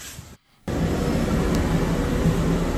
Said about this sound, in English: It sounds like an airplane. It does. What if this is just a big reveal that it's an airplane?